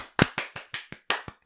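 A quick, evenly spaced run of about eight sharp hand claps, each a crisp, bright smack with a short decay, steady in loudness, with no voices.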